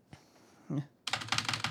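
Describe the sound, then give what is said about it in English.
Rapid keyboard typing of notes, a dense run of crisp clicking keystrokes, preceded by a single faint tap and a dull thump. “Okay, I'm done typing.”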